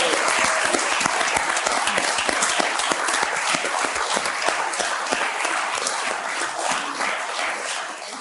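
A crowd applauds steadily, dense overlapping claps filling the whole stretch at a strong, even level before easing off slightly at the very end.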